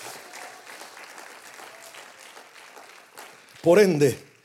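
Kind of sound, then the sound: crowd, loud audience applause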